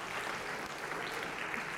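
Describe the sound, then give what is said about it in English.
A crowd applauds two players after a game, many hands clapping at once in a dense, even patter that holds at a consistent level throughout, with no voices standing out. “So a round of applause for these two.”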